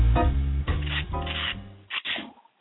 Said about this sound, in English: What are you doing over there? You sanding a wall with sandpaper over there? I was just brushing my teeth.